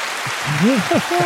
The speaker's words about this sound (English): Let me see if I got another noise for you. Player of the game. Nope, that's just applause.